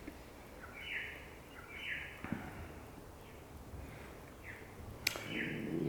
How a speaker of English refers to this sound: So, practicing with the observing self, and in a way, when the observing self collapses, it's just that sense of no longer any separateness, just the bird sound, just the sensation.